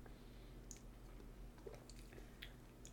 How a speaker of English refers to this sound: I'll take one more sip just for shits and giggles, but...